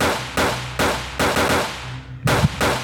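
Five loud revolver shots in a video game fire in an uneven rhythm, each a sharp, full-bodied crack that rings out briefly before the next. No one speaks.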